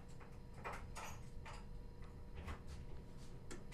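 Footsteps approaching at a steady walking pace on the roof where radio station CITR 101.9 FM in Vancouver is broadcasting, a series of soft, regular thuds and clicks over a low background hum, with no one speaking.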